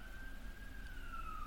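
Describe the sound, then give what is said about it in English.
An emergency vehicle siren, heard while the speaker's vehicle pulls over, sounds as one steady wailing tone whose pitch slowly drops as it passes, over a constant low rumble of engine or road noise. “Here again, we're pulling over.”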